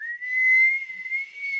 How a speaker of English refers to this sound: I would like to pull out my griffin whistle and blow it.